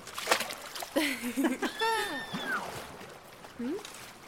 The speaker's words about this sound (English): if our splashing about is making this light, and it's just a little bit of light, then what's making that big light?